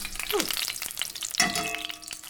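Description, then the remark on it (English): Grease sizzles and crackles steadily in a pan, a dense hiss of tiny pops, with a brief metallic clink of a utensil partway through and no voices. “Now, this is going to generate a lot of grease.”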